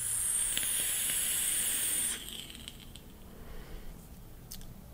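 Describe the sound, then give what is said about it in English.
A vape with a fused Clapton coil, set at 0.176 watts, hisses steadily for about two seconds, then cuts out, leaving faint crackles and pops sizzling quietly as it cools. “Have you noticed that all fused Claptons crackle after the fact?”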